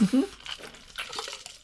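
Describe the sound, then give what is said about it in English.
A quick sip and swallow of water, a short wet gulp at the start followed by faint watery, trickling sounds and soft breathing for a moment. “Hold on, I just got to have some water.”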